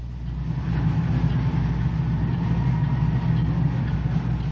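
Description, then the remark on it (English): Steady street traffic in Times Square at night, with a constant low engine rumble and idling hum, dense and unbroken for the whole stretch, with a faint higher tone drifting above it as sirens sound. “You are hearing Times Square in action.”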